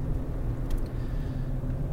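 A steady, low engine drone and road rumble fill the inside of a moving truck, constant with no talking, with a faint rattle or click about midway through.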